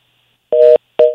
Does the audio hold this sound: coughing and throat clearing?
no